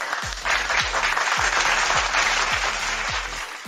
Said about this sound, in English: Applause.